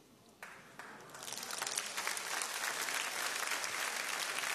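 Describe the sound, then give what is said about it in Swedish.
A few scattered claps at first, then a large audience breaks into sustained, full applause for Jesus over aid trucks sent to Ukraine. The applause stays loud and steady to the end, with no talking over it. “Det kan du ge Jesus en riktig applåd för det är ganska mycket.”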